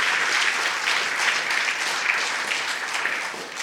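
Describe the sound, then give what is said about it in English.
Steady applause from an audience for the candidates at a debate, a dense wash of many hands clapping at once that holds fairly loud and even throughout, with no voices standing out. “So a big round of applause for the other candidates, because it is a very daunting experience.”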